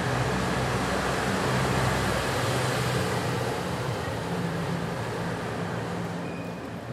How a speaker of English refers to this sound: And today you find us in a tunnel under the railway in an area of Bristol called St. Werburgh's. And it's fairly gusty, and you're going to have to tolerate a little bit of passing traffic, such as this.